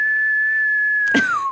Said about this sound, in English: Yes, that deserves all the whistles.